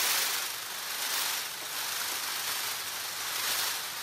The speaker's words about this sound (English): Scientists aren't quite sure how the train rattle love buzz fits into peacock mating behavior, but for the first time, we're starting to listen in.